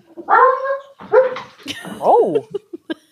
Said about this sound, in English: Everybody calm down over there. It happens every time. They're doing the dog reenactment of this story.